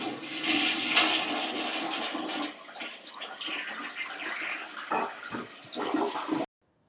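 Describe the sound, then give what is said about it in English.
A toilet flushes, a loud rush of swirling, gurgling water that lasts several seconds before cutting off abruptly. No one speaks. “All right, let's flush it.”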